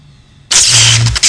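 After a brief hush, an engine cranks and roars to life with a sudden loud, rough burst and a low droning rumble underneath, sputtering briefly near the end.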